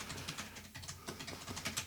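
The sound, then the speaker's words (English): Rapid, uneven clicking of fingers typing on a computer keyboard as a person searches the internet, fairly quiet, with a steady low hum in the background. “You guys hear him typing?”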